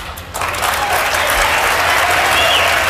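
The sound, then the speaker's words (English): Loud, sustained applause from a large debate audience, a dense wash of clapping that swells in quickly and holds steady throughout, with a faint murmur of crowd voices underneath. “This guy, like, he runs on applause, Cruz.”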